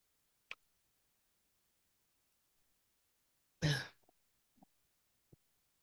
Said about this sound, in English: I don't know how much more I can do. I'm going to keep coughing. Jeez.